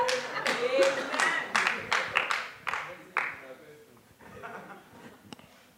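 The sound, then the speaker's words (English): Scattered, uneven hand claps from a church audience during a sermon, about a dozen sharp slaps over several seconds, mixed with raised voices and calls that fade toward the end. “Nobody's clapping.”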